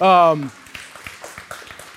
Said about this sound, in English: Oh, that gets a cheer? Okay, yeah, all right. I agree with you. I'm with you.